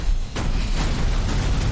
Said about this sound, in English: What did I tell you? Minimal explosions. I said no explosions.